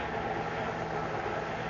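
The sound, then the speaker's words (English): A car engine idles steadily after the car is pulled off a steep road to park, a low continuous rumble with a faint hum and no breaks, heard on its own without any talking. “There. I got her off the road.”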